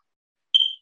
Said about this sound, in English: I just heard my smoke alarm. You know how they do when the battery gets low? It just chirped.